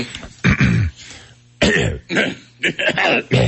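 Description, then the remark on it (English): A person fakes a series of coughs to disguise an insult, five or six loud, throaty bursts with a voiced, word-like quality, coming in an uneven rhythm with short pauses between them. “I've never been very good at the cough curse.”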